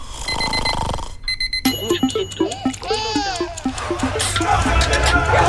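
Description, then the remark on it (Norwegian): A short radio jingle of bright electronic beeps and chirpy, sliding synth notes in a quick, busy rhythm. It plays loud and layered, with no one talking over it. “Spille en vignett mens du surrer med det”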